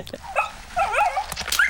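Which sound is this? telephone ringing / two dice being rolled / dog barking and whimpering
dog barking and whimpering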